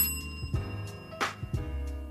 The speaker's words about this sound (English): Y'all hear my bell?